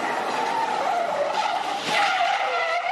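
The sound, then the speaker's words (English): A car drifts on a road with a sustained, loud tire squeal, its pitch wavering steadily over a constant engine roar, continuous with no talking. “Arabian garb stand on the side of the road and watch each other do drift. And so I guess I wouldn't try this at home”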